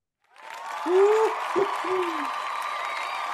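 A crowd cheers with a steady roar of applause, while a few loud, rising-and-falling hoots and whoops ring out near the start before the cheering carries on evenly.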